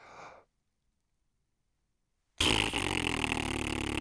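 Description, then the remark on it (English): A short breathy exhale, a pause of silence, then a loud, sustained, buzzy raspberry blown on instruction with the tongue between the lips, rough and sputtering, running until the end. “when you hear this story, you should put your tongue between your lips as you were instructed before and blow as we did earlier, and at the same time stomp your feet and bang a drum.”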